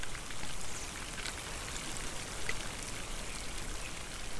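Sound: rain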